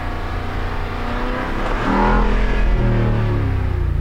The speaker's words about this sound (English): The best thing is the decel with this exhaust. It's so good. So awesome how growly it is.